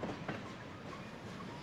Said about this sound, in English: he and the other ponies and animals were put in big railroad cars and the whole train was hauled away by an engine.